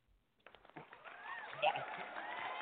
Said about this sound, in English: All right, we're going to give you a little clap. We're going to give you a clap out here.